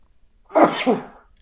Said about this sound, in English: I wish I could stop sneezing.